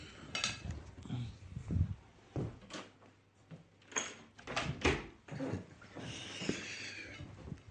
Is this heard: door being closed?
yes